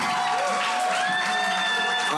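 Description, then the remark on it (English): An audience at a church service applauds steadily for a couple of seconds, a dense wash of clapping with scattered cheers and high, sustained vocal whoops rising above it. “Please, can we give another round of applause?”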